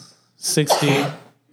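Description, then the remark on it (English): A single sneeze: a sharp hissing burst followed by a short voiced tail, fairly loud against an otherwise quiet background. “Bless you.”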